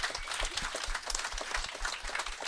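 A crowd applauds to thank a guest for reading a weekly-magazine story aloud, many hands clapping in a dense, steady patter that holds at a fairly even level throughout, with no voices standing out.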